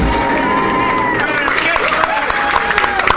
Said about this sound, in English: Cheers, son. These guys never get enough applause, you know. They're doing all the hard work while we're just drinking and having fun.